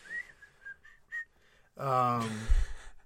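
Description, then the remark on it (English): A person whistles a few short, high chirping notes, imitating a mole rat, followed by a louder burst of voiced, harmonic sound that ends in a low thump. “They probably whistle when they talk.”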